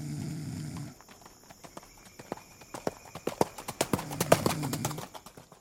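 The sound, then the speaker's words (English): Horse hooves of Confederate general Jeb's cavalrymen clip-clop as they ride on at midnight, in a steady, uneven rhythm of sharp knocks growing busier, as if several horses walk together, after a brief low rumble at the start. “Men fall asleep on their horses.”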